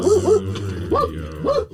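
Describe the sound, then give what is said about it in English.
A puppy gives a few short, high whimpering yelps, two quick ones, then a pause and two more, with faint background noise and no talking. “Hey, puppy. Oh, pretty, pretty puppy.”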